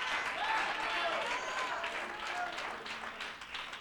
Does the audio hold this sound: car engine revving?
no